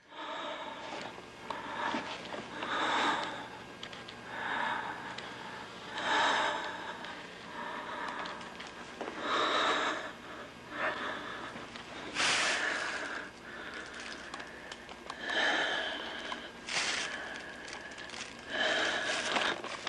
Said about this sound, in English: He's breathing as heavy as you would imagine a man would who was filming his neighbor undressing. It is very... Maybe I'll play a sound clip just of him breathing, because it is quite funny. And that's really the only sound, right?